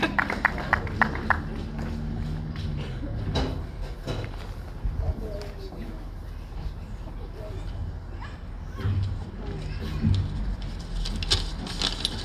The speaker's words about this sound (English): With the cheering section.